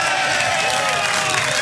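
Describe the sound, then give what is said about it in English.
A loud crowd screams and cheers continuously, a dense wall of high-pitched voices with no break across the short burst, as a team called the Flaming Mongrels is called up at an awards announcement. “For a call up, get ready for the scream and the jump and the wave, the Flaming Mongrels.”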